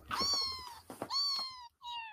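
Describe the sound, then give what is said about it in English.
A cat meows several times in close succession, loud, with drawn-out, wavering cries and a short pause before a final meow, no voices present. “Okay, that's enough of the cats for now.”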